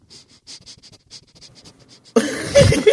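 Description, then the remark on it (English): A person makes a rapid string of short, sharp sniffs with their nose, repeating for about two seconds, then giving way to a sudden louder burst of rough, noisy sound. “Hey, hey, sniffing waters.”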